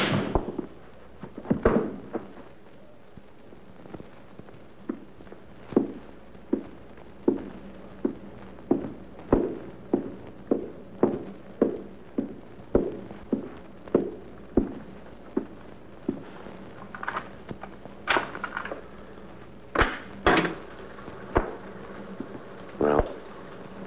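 Heavy pounding on a wooden door: a long run of dull, booming thuds struck at a steady, insistent pace, a few blows landing louder and sharper than the rest.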